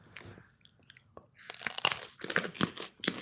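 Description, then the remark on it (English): A crisp, crunchy bite into a fresh red Fresno pepper, followed by a run of wet, crackling chews with sharp bursts repeating irregularly, fairly loud with no talking. “So these are the red Fresno peppers.”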